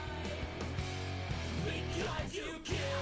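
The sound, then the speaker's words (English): A loud, dense emo rock song plays steadily, with a raw screamed vocal rising in the background toward the end over driving guitars and drums. “Just a little bit of that background scream there.”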